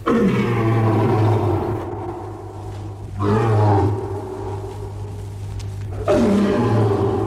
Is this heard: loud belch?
no